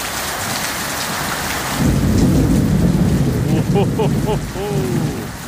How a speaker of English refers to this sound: This is of some beautiful rain that swept over Cape Town last night.